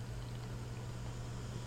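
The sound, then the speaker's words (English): A purple-coloured tart beer pouring into a glass in a steady, unbroken stream, a soft continuous fizzing and splashing at even volume with a low hum underneath, no voices. “Pours a nice purpley color.”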